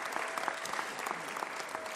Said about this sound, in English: Please just give her a round of applause for that, please. Thank you.